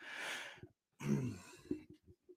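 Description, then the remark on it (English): A person clears their throat roughly, then lets out a harsh, rattly cough followed by a few short, softer coughs trailing off. The sounds are fairly loud, with no talking. “My throat is weird from the coughing.”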